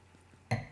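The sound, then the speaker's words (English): After a faint low hum, a splash of an amber-coloured drink is suddenly poured into a martini glass for tasting: a bright splash against the glass with a ringing tone that carries on briefly. No one speaks. “And what I'll do is I'm going to pour just a splash in here for you to taste.”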